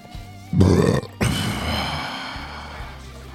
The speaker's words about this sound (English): Sorry for that burp.